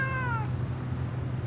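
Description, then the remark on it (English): A single meow from a cat named Doug, clear, with a slightly falling harmonic tone lasting about half a second, followed by a steady low hum in the background. “Dumb name for a cat, though. Ain't that right?”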